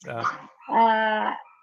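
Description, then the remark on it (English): The speaker's dog gives two vocal bursts: a short, rough bark followed by a longer, tonal, whining bark that holds a steady pitch for under a second, both fairly loud and on their own. “See, my dog decides to participate.”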